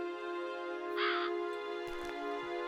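crows cawing

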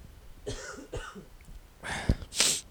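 cough

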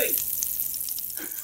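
food sizzling

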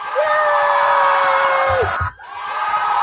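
crowd cheering sound effect

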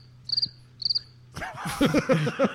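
cricket chirping sound effect

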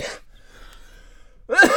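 cough

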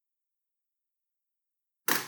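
pencil dropped

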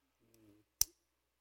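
ballpoint pen clicking

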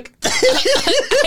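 fake coughing

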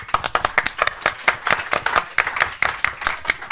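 audience clapping

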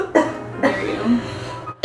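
cough

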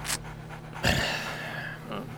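dog panting

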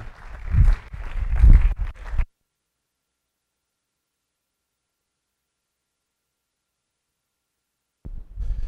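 audience applause

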